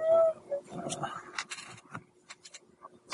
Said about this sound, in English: Obnoxious dice. Gold one is quickness. Exploded. 10. Okay. It's the most dice explosions ever.